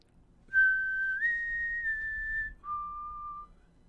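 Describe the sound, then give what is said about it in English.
A sweet, clear four-note tune, a little song signalling quitting time in the orchard: it steps up in pitch, lingers, then drops to a lower closing note, with no one talking. “She opens her mouth and sings a little four-note run in a sweet, clear voice.”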